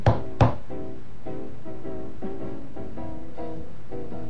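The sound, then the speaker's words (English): Sharp knuckle raps on a wooden door, a man knocking three times, quick and distinct, followed by a soft bed of sustained musical notes with no voices. “And he knocked on it with his knuckles 3 times.”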